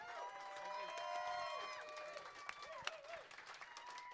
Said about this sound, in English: I would like to hear a warm round of applause for this evening's entertainment here in the Mission Room.